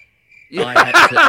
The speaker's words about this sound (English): I had to add my little touch to that. Did you just play cricket sound effects? Yes. In the background. That's really good. I baked it into the video, though, so I didn't have to do anything.